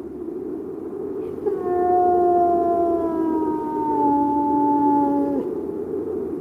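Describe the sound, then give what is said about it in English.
A hound howls once in a long, steady wail lasting about four seconds, its pitch sagging slightly before it cuts off, heard clearly over a low, constant background rumble. “heralded always by the appearance of the hound. Fear then this spirit, and seek not to hear its cry”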